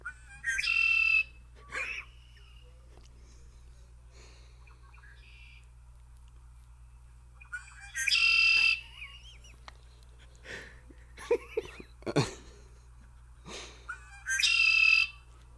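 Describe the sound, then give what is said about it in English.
A red-winged blackbird gives three loud, buzzy trilling calls several seconds apart, each a harsh rattling burst over a clear whistle, with scattered softer chirps and clicks between them and a low background hum. “Here we go. The red wing blackbird.”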